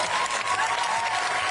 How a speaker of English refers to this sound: Listen to those idiots clapping.